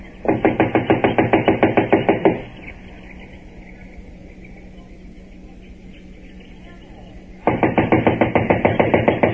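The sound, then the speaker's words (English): Two bursts of rapid, steady knocking on the wooden door of a run-down, unoccupied house, loud, separated by several seconds of quiet low hum. “Yes. It hasn't been occupied since the day of the inquest. I'll knock.”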